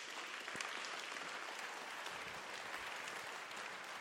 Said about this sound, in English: Can we just give God a round of applause?